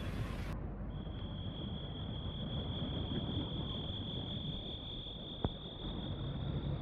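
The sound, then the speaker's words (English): A sonic screwdriver's electronic whirring: a steady, high-pitched whine holds unbroken for about six seconds over a constant hissing rumble, with one sharp click near the end. “It's a sonic screwdriver.”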